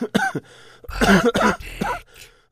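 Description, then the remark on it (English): A few short, raspy coughs, followed by a longer run of harsh, throaty hacking and throat clearing that is fairly loud and ends in a quieter gasp. “crashes through a brick wall, then another, then another, then another, coughing.”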